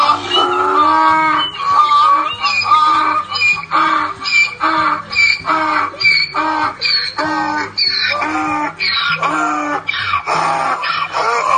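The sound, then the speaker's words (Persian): A donkey brays loudly and continuously, its harsh, wheezing hee-haw calls repeating in a steady seesaw rhythm with no one speaking. “وقتی خوب گوش کرد دید صدای او فرق می کند. به خر نزدیک شد”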